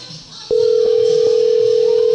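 After a brief moment of faint hiss, a loud, steady telephone call tone starts abruptly and holds unbroken to the end, with no one speaking.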